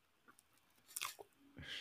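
Quiet chewing of a soft, bite-sized mochi ball of chewy rice dough, with wet mouth clicks and a few brief smacking bursts, ending in a louder moist smack; no talking.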